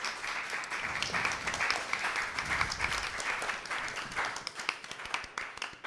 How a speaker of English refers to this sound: Nice round of applause for these two and Cody.